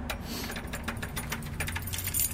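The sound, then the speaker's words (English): A jangle of keys as the door of a rectory is unlocked, with a quick, irregular run of bright metallic clinks and rattles lasting a couple of seconds and no voices. “I've got my keys here. I'm going to go inside if that's okay with you.”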